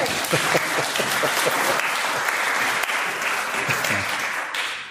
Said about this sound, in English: Shall we give him a clap?